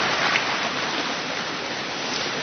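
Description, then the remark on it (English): Steady rain falls in a continuous, even hiss, with a dense patter of drops on a surface. It stays moderately loud and unbroken throughout, with no voices. “And we'll just enjoy the rain. Okay? You hear it. I hear it.”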